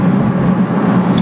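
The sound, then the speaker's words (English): A five-speed car's engine roars through its exhaust, which needs replacing, a loud, steady low rumble with a raspy edge that holds even for the whole moment, with no voices. “We did this before, and we were quick to come to the assumption that I need new exhaust.”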